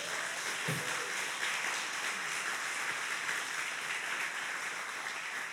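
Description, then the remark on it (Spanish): A crowd applauds for Jesus steadily for several seconds, a dense, even wash of many hands clapping at once, with no voices standing out. “Dale un aplauso a Jesús.”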